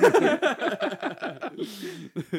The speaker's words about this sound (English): Sorry, that's my chair. It's very squeaky.